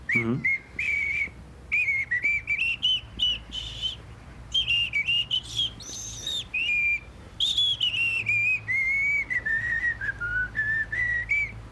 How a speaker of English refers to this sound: I'm just going to go inside. Pay the attendant, come back outside, pump gas, whistle.